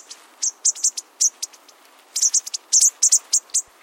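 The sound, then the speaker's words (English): A foraging flock of bushtits, small long-tailed birds, gives quick, thin, high-pitched calls to keep track of one another, many short notes overlapping in loose irregular bursts at moderate volume, with no voices present. “Their quiet calling helps them keep track of one another.”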